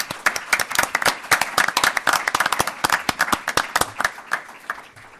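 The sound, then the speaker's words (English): An audience breaks into a round of applause, many hands clapping in a dense, steady patter that holds at an even loudness for several seconds, with no voices rising above it. “As I say, they are the ones who did all the work, and we certainly owe them, I think, a round of applause.”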